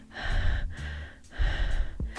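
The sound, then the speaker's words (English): Several quick, audible breaths follow one another in a steady rhythm, fairly loud, each with a breathy airy rush and no talking. “I can hear your slow and even breathing. Am I slightly quicker breathing?”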